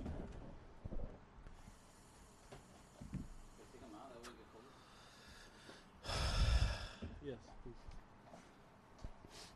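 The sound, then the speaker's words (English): A fridge door squeaks with a short, wavering creak midway through, followed by a louder burst of bumping and rustling as drinks from a case are put into the fridge, with faint voices in the background. “Do you hear the squeak of the fridge?”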